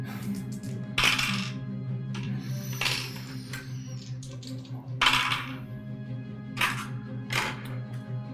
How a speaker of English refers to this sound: And next would be she's going to roll her defense. She gets those dice.